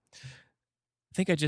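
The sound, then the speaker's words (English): A single breathy exhale from a red-haired person breathing on a microphone, soft and airy, lasting under half a second; after a brief silence, a person begins speaking. “I think I just heard a redhead breathing on a microphone.”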